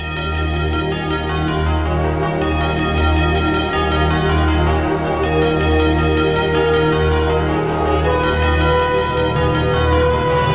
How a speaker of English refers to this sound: Love the bells of the NFL.